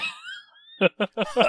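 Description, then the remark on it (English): A drawn-out, rising vocal tone fades out, followed by four short, harsh coughs in a quick uneven series, the last one longest and loudest. “I'm going to cough now.”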